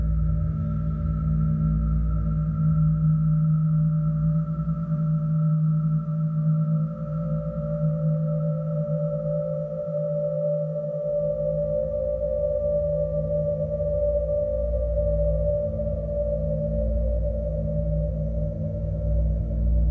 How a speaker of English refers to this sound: I discovered that using this instrument, I could create sounds just by breathing on it.